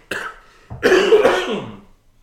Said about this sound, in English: I'm getting over a bit of a cold, so in the wet coughing part of it.